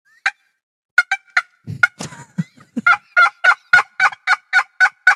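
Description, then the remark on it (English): A voice mimics a turkey gobble: a loud, rapid string of throaty warbling yelps, broken midway by a low rumble, then finishing in a steady run of about ten rhythmic gobbles. “It wasn't funny until he started making the noises.”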